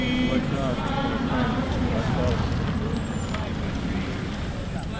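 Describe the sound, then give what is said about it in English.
A car engine rumbles steadily as the car backs up and drives away at an anti-war protest, its noise easing slightly at the end, with a murmuring crowd and street noise in the background. “And the car is backing up and driving away.”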